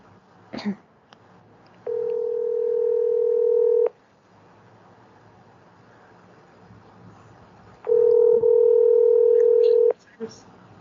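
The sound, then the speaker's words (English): Two long, steady ringback tones from an outgoing call placed on a phone, each lasting about two seconds with a pause of several seconds between them, heard clearly over a faint low background hum. “Oh, I have her number on my phone. I hope I star 67 did.”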